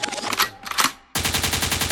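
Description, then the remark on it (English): A loud gunfire sound effect: a few sharp blasts, a brief drop-off, then a sudden rapid burst of automatic fire rattling steadily until the end. “Lakewood means rewind, a gunshot means forward.”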